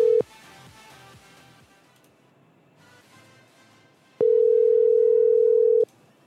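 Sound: telephone dial tone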